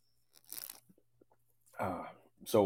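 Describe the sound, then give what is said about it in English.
A quick, soft slurping sip of coffee, followed by a short pause and then brief voiced sounds, like an appreciative exhale after drinking. “I'm going to take a sip of my coffee, actually.”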